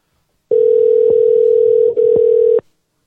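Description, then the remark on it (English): A telephone ringback tone while calling a woman back: one steady, mid-pitched electronic hum lasting about two seconds, with a tiny hiccup near the end, then silence. No one speaks. “Let's call her back and see if she'll hang up immediately.”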